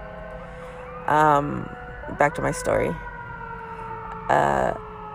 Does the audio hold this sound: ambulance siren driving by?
yes